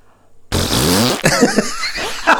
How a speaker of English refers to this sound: And it was a series of fart noises. And it was because in these big earphones, I just jumped out of my skin.